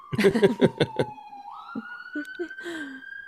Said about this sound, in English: You have sirens. You got to mute yourself during the sirens.